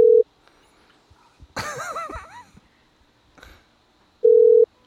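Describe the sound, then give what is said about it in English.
A phone ringback tone from a call to a man's phone sounds in two short, steady beeps, one at the start and one near the end, with a brief wavering voice and faint background noise in the gap between. “Yeah, we'll just keep calling nonstop and don't, if he gets voicemail, he's going to lose his mind.”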